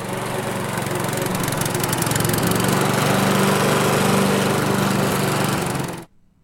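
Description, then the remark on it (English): A lawn mower engine runs steadily and loudly, a constant buzzing drone with low harmonic hum, continuing without pause for about six seconds before cutting off abruptly. “Yeah, that was a mower. A lawn mower.”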